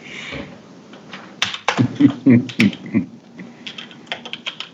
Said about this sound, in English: I am. You can hear me typing, right? Yeah. I'm seeing when Ricky Davis, retired. Your keyboard is the only keyboard I've ever heard have a crust-breaking sound, as opposed to a... It's all that Cheeto dust.